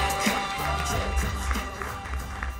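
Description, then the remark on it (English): A comedy show audience claps steadily for the first round of comedians, a dense, even wash of many hands with a few brighter individual claps standing out and a faint murmur of crowd noise underneath. “Clapping.”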